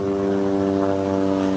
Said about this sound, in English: Okay, helicopter.